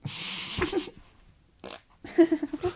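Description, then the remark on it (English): A fart rips out, first a raspy burst, then after a short pause a longer buzzy, sputtering flutter of quick pulses. No one speaks. “I'm going to fart.”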